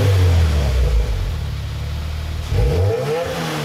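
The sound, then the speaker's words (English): A stock 2019 Subaru WRX engine revs loudly, a deep, throaty rumble that rises, dips briefly, then climbs again with rough harmonic growl, no voices over it. “By the way, if you guys are curious, this is what a stock 2019 Subaru WRX sounds like.”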